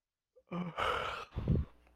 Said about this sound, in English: Stop your yawning, buddy. Yeah, my bad, dude. It's been a long day.